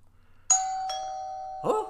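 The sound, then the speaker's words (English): A doorbell chimes with two quick bright tones that ring on and sustain steadily, followed near the end by a short, muffled burst of noise over the fading hum. “Someone's at the door.”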